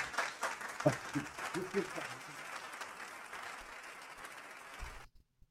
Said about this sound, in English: So, I did forget your round of applause. No, we still have no sponsorships. Here's your round of applause. I forgot it.